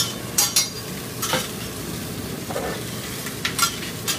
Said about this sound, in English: You got me a frying plate going